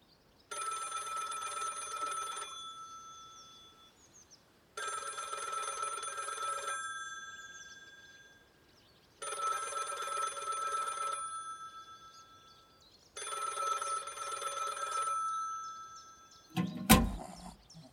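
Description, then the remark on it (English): A club's telephone rings inside the club four times in a steady pattern, each burst a bright trilling bell lasting about two seconds with pauses between, followed by a brief clatter at the end. “Oh, I know, I could call the club's phone. That would ring inside of the club, and surely that would wake Hedgehog.”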